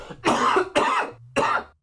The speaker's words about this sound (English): pardon me. Oh, that cough wanted to get out. Excuse me for that.